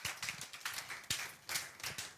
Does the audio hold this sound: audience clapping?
yes